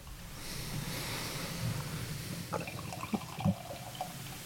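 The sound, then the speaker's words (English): Freshly canned Santilli beer pours steadily into Smuttynose balloon glasses with a rushing, splashing gurgle, followed by a few small clinks and fizzy crackles near the end. No one speaks. “We're pouring these into our smutty nose balloon glasses.”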